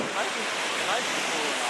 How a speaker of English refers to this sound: We keep seeing more and more waves crashing into the cove. It was like a Pirates of the Caribbean movie. The water was rising so fast.